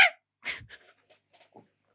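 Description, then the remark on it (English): A voice imitates a distressed dog, as if a dog were in a blender: two loud, strained yelps, followed by a few faint, breathy whimpers trailing off. “Like a dog in the blender sound?”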